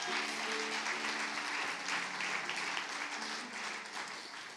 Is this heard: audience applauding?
yes